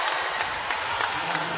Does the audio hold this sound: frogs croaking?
no